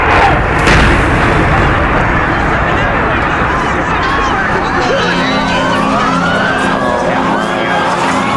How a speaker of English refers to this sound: Oh, that was a huge explosion.